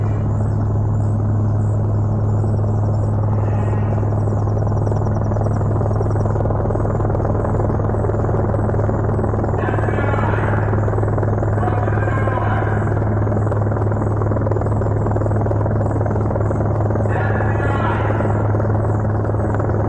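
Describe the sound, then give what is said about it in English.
Helicopters fly overhead as police arrive at a scene, the deep rotor drone loud and steady for the whole stretch, with a few brief whooshing swells rising above the constant rumble. “And our crew on the scene was able to get some of the scene as they were coming in with choppers overhead.”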